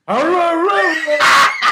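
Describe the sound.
A person imitates a dog barking: a loud, drawn-out, wavering yelp of the voice, followed by two short, harsh, breathy bursts.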